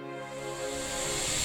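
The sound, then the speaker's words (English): A toilet tank in a bathroom in Prague, constantly filling, refills with a steady, continuous hiss of running water, carrying a faint tonal whine and slowly swelling louder over the short stretch, with no voices. “I went into the bathroom and noticed that the toilet was constantly filling.”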